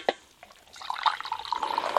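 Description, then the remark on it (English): Hot medium-light roast coffee from Sakura Coffee Co. is poured into a cup, a steady splashing trickle that starts after a brief clink and keeps burbling to the end. No one speaks. “Beautiful pour.”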